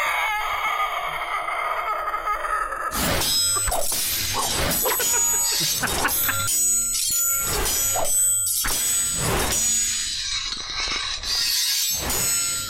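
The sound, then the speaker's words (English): A loud crash of a heavy metal robot slamming down into the street and leaving a crater, followed by a chaotic burst of clanging impacts, shattering debris and grinding mechanical noise that continues for several seconds. “It crashed down into the street below it, leaving a crater”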